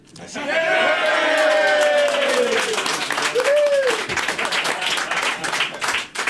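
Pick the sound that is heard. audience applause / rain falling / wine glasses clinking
audience applause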